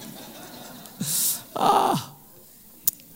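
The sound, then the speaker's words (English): A small child snores twice in quick succession during a church service, each breath a short, breathy, rasping rumble, clear against the quiet, followed by a faint click. “who is snoring in my service? Is that little guy over there?”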